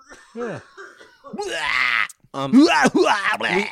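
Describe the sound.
A voice mockingly imitates another person's coughing: a few wavering, groaning vocal sounds, then loud, harsh, raspy bursts in quick succession, exaggerated and theatrical, with a laugh-like quality.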